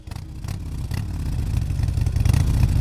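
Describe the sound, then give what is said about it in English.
A Harley-Davidson motorcycle engine revs up steadily, its deep, throaty rumble growing louder over a few seconds with rhythmic low pulses and rattling clatter, with no voices. “As Angela prepares to ride off into the sunset, we turned our attention to Harley Davidson, the great maker of motorbikes. But as our Money Talks podcast found, their engines are stalling.”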